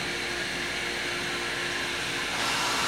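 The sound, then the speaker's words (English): An espresso machine runs with a steady, loud mechanical whir and a faint hum underneath, and a brighter hiss swells in near the end. No one speaks. “As soon as the espresso machine comes down a little bit, it's all good.”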